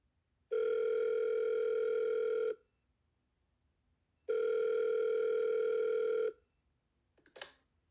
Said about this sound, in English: A mysterious phone call is made to the Carvel home, answered by a friend of the family.